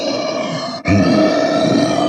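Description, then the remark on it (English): A voice imitates a creature's heavy breathing: two long, rasping, growly breaths, loud, separated by a brief catch, with no other talk. “He's breathing heavy.”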